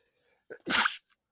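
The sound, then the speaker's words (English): A single loud sneeze: a short sharp inhale followed by an explosive burst of breath, with silence before and after. “Bless you.”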